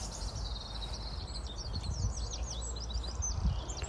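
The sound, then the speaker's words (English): Several birds chirp and sing at once in a busy, overlapping chorus of quick high whistles and trills on a mild morning of about 10 degrees as the sun comes up, steady throughout over a low outdoor rumble. “Right, racket going on here this morning with the birds.”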